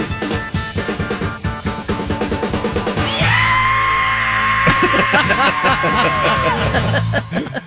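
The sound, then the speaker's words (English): A person imitates a jet with a loud, sustained, whining scream that rises in pitch, holds steady for about three seconds, then drops off, over rhythmic background music. “What did it sound like again? Of the jet.”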